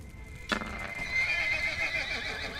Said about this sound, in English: A flaming horse, man. Ugh. You never quite prepared for what you're gonna run into. That's an angry sounding horse.